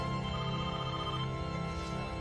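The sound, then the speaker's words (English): A telephone rings with a steady electronic tone that holds without a break for a couple of seconds, clear, with no voices over it. “Candace, your brother's on the phone.”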